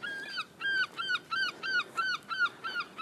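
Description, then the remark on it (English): A rapid series of harsh, repeated bird calls, about seven in quick rhythmic succession, from seagulls squawking, with no voices. “Getting attacked by the seagulls.”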